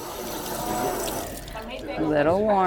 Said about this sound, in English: So we're going to start with 3 cups of warm water.